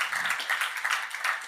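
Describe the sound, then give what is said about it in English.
An audience applauds: a steady, dense patter of many hands clapping at once, bright and crackly, holding a fairly even level without a break and with no voices. “Us musicians are quite insecure people sometimes, so claps are lovely, so thank you for that.”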